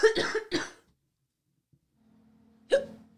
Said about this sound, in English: Yeah, it's kind of funny. We've been doing like dueling coughs. I don't know if you've noticed that. What does that mean? Like you'll cough and I'll cough.